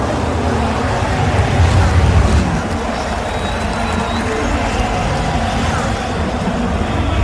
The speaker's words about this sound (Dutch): Gejuich vanaf de tribunes. Zoals we het vorig jaar op Zandvoort zo mooi konden horen. Nu ook op Spa hoorbaar. Formule 1 management weet waar je de microfoons neer moet zetten.